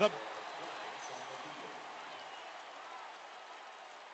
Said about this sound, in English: And the fans giving themselves a nice round of applause as they should.